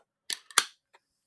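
A beer can pops open with a sharp metallic click, followed by a bright hiss of escaping fizz, then a small faint tick a moment later. No one speaks.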